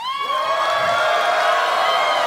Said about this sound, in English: I love double-dipping on the applause like that.